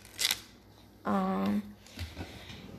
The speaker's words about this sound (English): Do you ever hate it when scissors just don't work? Oh, I got it. Actually, they do work.